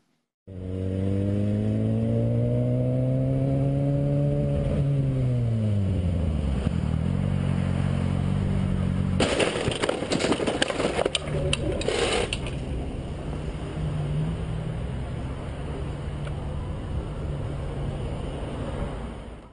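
A motorcycle engine hums in traffic, filmed by a camera on the rider's helmet, its pitch dropping as it slows, then a harsh burst of crashing and scraping lasts a few seconds as the bike ends up under a truck whose driver got distracted, before settling into steady road rumble.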